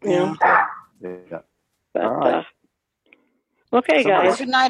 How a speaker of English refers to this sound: Somebody's chiming in. I hear a dog barking.